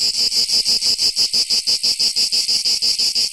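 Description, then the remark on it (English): Loud, steady cicada buzzing fills the whole stretch, a shrill high drone pulsing in a quick even rhythm several times a second, continuous with no voices. “Cicadas.”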